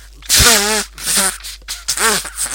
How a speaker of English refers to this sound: Oh, sorry, I just need to blow my nose.